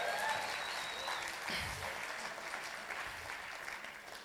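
A large crowd claps steadily in dense, sustained applause that stays fairly even in loudness throughout, with a few brief whistles early on and no talking.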